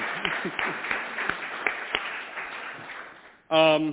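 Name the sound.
round of applause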